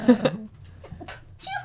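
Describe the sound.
A small, cute sneeze bursts out at the start, loud and high-pitched, followed by a few softer breathy, voiced sounds and short murmurs.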